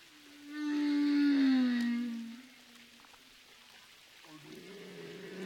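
A long, low humpback whale moan swells and slides slightly downward in pitch over a couple of seconds, with harmonic overtones, then fades into a soft underwater hiss before a fainter second call begins, recorded underwater at Roca Partida.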